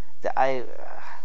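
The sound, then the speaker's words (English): A dog outside lets out a short bark followed by a longer, tonal bark that trails off, with nothing else in the background. “I gotta get that dog.”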